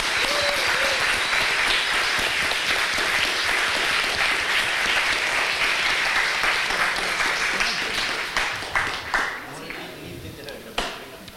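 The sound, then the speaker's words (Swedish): A crowd applauds steadily for about eight seconds, dense and loud, for a person who has just received a chip implant, then the clapping thins out into a few scattered claps as it dies away. “En applåd.”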